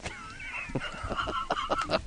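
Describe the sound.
A voice imitates chicken noises: a warbling, drawn-out cluck followed by a quick run of short, squawky bursts, fairly loud and alone without other talk.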